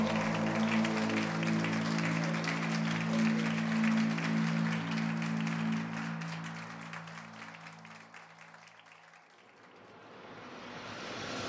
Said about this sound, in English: And around me, the room comes alive with eager applause.